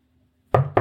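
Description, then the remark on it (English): Two firm knocks on a door, the second following quickly after the first, breaking an otherwise silent moment with no voices present. “There's a knock on the door.”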